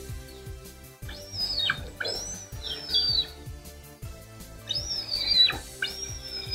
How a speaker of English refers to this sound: All right, could you hear that thing that sounded like a broken squeaky toy? You've already in the hint told us that it's a raptor, right? That's right. Like that it's a type of bird of prey.